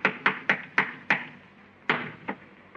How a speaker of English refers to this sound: Hey, listen. You hear that? Somebody's walking on the ceiling. Listen.